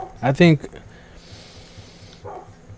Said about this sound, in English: Oh, was that a dog getting hurt? That sounded like a man. Damn. Hope that dog is okay.